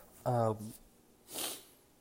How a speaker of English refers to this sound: So sorry about that sniffle.